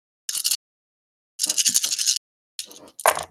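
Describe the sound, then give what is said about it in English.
Many dice rattle and clatter in three bursts as they are rolled for a Fireball spell in a tabletop game: a short shake, a longer rolling tumble of many dice, then a final scattered clatter, bright and crisp with quiet gaps between. “That's a lot of dice.”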